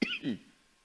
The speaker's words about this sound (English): I'm trying to not cough when I preach, but I still cough.